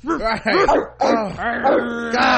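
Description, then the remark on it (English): A human voice mimics a dog barking, producing a quick run of loud, yappy woofs and yips, with a brief pause before another strained, drawn-out bark-like cry. “But if he would have, made better life choices, they could have barked him out the room.”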